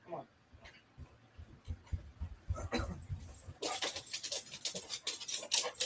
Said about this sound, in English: And pause. My dog's barking at something.